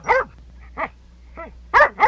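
A dog barks five times in irregular succession, the middle barks softer and the last two loud and close together, with no talking.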